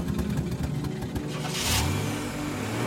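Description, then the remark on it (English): An old car engine cranks with rapid rhythmic pulses, catches with a brief rising rev, then settles into a steady low rumbling idle, fairly loud, with no voices. “I shake these thoughts from my head and start up his car.”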